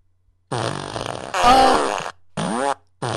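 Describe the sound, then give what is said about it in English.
A loud fart machine sound effect plays in several bursts: a long buzzing blast with a wobbling pitch, followed by two shorter sputtering toots separated by brief pauses. No one speaks. “Oh, she's gonna give you the fart machine.”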